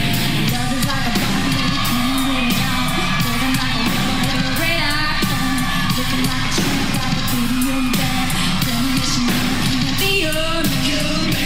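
A live rock song cover played loud and steady, with a roaring crowd yelling and cheering throughout, the singer's vocals buried under the band and audience noise.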